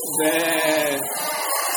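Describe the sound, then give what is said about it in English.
Children's voices imitate a sheep's bleat as sound effects for a temple market scene, one long, wavering "baa" held for nearly two seconds, loud, then trailing off softly. “Okay, yeah, now the sheep.”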